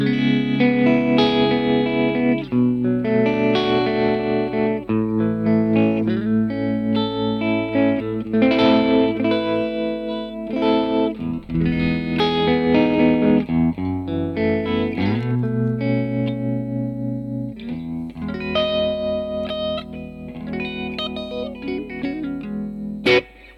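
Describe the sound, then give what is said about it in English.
An electric guitar with P90 pickups, in the middle pickup position with both volumes all the way up, plays chords and short riffs through a slightly driven AC30 amp, with tremolo on and a wash of reverb. The sound is pulsing and loud, lasting about twenty seconds with no voices. “I mean, it's P90s again, middle position, both volumes all the way up. Yeah, volumes all the way up. Yeah. Obviously, the trem's on. Yeah. And reverb.”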